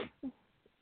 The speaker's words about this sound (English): Yeah, it's a cute little squeak. It's a cute little squeak. My husband calls it a mouth sneeze. The first time I did it in front of him, he goes, "One day your head's gonna explode when you do that because you're just keeping it all in."